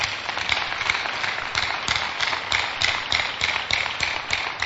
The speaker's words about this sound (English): Clap for Jesus.